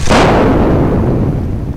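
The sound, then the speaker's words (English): A single sharp, booming blast hits with a bright crack, then decays into a long rumbling roar that fades slowly: an electrical explosion as a sputtering power cable is shoved against a steel bulkhead aboard a ship, throwing sparks and shaking the entire ship. “A sound like a thunderclap shook the entire ship, and for a moment everything went white.”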